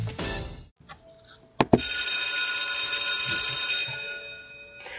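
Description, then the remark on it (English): A loud electric school bell rings steadily for about two seconds after a brief clack, signalling the start of class, its metallic clatter sustained, then cuts off and fades into quiet. “You heard the bell. The bell had rung. Come to class.”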